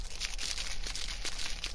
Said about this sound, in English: It's like the rustling of a packet of crisps.